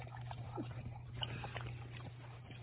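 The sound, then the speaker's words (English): A 17-year-old dog laps water from a cup, with a quick run of small wet slurps and clicks over a steady low electrical hum, with no one talking. “Sorry, it takes a minute for him to get his water.”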